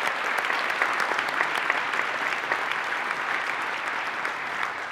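Sustained applause from a roomful of people, a steady dense patter of many hands clapping at an even level for the full five seconds, with no voices standing out.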